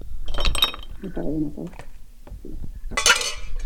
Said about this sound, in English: Is when I would add the ice to the glass and to the cocktail mixer. Because at this point, the cocktail is ready to be made, so we're going to ice the glass and the cocktail mixer at the same time.